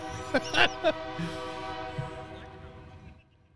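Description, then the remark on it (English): A loud, sustained train horn blares a steady chord as a train comes through during a baseball game, with a few bright bell clangs ringing out near the start before the horn gradually fades away. “I mean, don't you hate it when a train comes through and interrupts a baseball game?”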